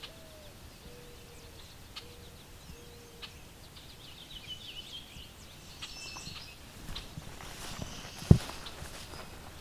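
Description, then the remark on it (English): A yellow-billed cuckoo gives a short series of low, hollow cooing notes, four evenly spaced calls, fairly faint over outdoor ambience, followed by rustling footsteps and a sharp thump. “I've got a yellow-billed cuckoo.”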